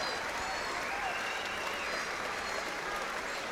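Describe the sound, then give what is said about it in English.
A large stadium crowd applauds Wolverhampton Wanderers players, including Gary O'Neill, as they leave the field. A dense, continuous wash of clapping with scattered cheers and whistles rising through it, holding at an even, loud level throughout. “Gary O'Neill, one of those taking all the applause and blowing kisses to his family in the stand.”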